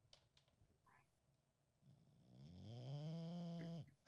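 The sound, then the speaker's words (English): A dog named Quinn breathes right up against the microphone held to it: faint snuffles at first, then one loud, drawn-out, snore-like groaning breath that swells for about two seconds and cuts off. No one speaks. “Hear the dog. Put the microphone to him.”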